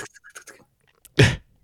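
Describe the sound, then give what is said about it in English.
A voice imitates Rolodex cards flipping: a quick run of soft clicking, fluttery taps, a short pause, then one louder, breathy burst to finish. “That's the sound a Rolodex makes, kids.”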